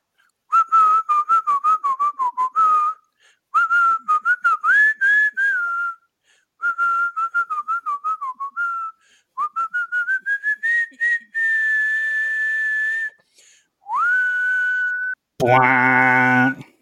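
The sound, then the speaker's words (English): A person whistles a melody in several phrases, mixing quick tongued notes with long held tones and gliding pitch, loud and alone; a brief buzzy, reedy tone ends it. “So, yeah, I'll just whistle it every day when we start.”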